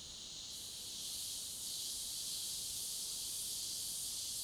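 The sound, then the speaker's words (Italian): A dense, unbroken high-pitched drone of tropical cicadas fills the night in a tropical forest in Costa Rica, loud and steady from start to finish with no pauses or voices. “Questa sera il protagonista assoluto sono le cicale turbo, come le chiamo.”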